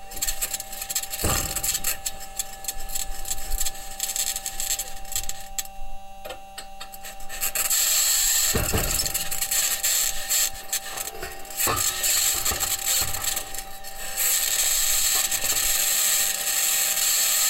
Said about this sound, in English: That scratching is the sound of the wheels in contact with the surface of Mars. The clanks and bangs are from the suspension.